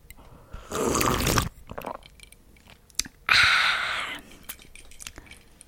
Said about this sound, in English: So, let me just take a sip of water first.